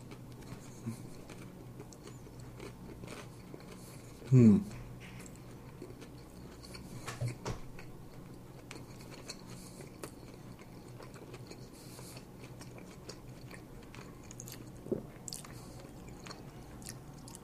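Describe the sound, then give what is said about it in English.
One sharp, loud bite into a spicy KFC chicken sandwich with pickles, followed by quiet, irregular chewing and soft squishy mouth sounds over a low hum, with a few small crunches scattered through. “Let's go in for another bite.”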